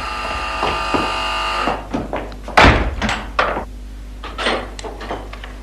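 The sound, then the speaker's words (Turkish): Several sharp wooden knocks on a door, irregularly spaced, with one especially loud thump in the middle; a steady tonal hum fades out early and no one speaks. “Kapı çalınıyor”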